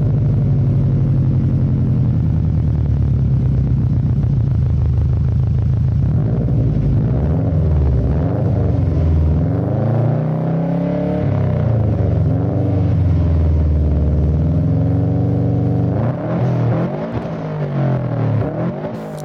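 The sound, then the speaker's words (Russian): The engine of a Soviet VAZ-2101 (Zhiguli) sedan rumbles steadily, its pitch rising and falling through several revs, with a louder surge near the end; no one speaks. “С конвейера Волжского автомобильного завода сошли первые автомобили ВАЗ-2101.”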